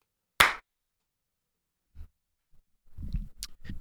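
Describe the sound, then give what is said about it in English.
A single sharp hand clap for audio sync after a 3, 2, 1 countdown rings out loud, followed by quiet, then faint thumps and low rustling handling noises. “Let's clap in 3, 2, 1.”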